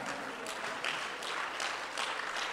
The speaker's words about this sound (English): Let's clap our hands. Hallelujah.